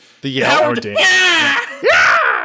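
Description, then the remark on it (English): A voice imitates the famous 2004 campaign rally scream of presidential candidate Howard Dean: loud, strained, drawn-out yelling with a wavering pitch, a brief break, then a sharp rising whoop at the end, forceful. “The scream that lost the election.”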